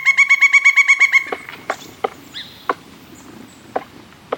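pileated woodpecker

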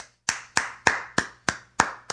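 hand clapping

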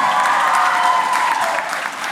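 audience round of applause

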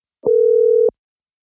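telephone dial tone

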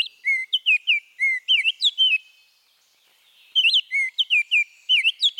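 baltimore oriole song

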